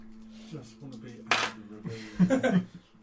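Dice drop and clatter across a hard surface, a sharp rattling burst followed by a second flurry of bright clinks and skitters, with faint murmuring voices in the background.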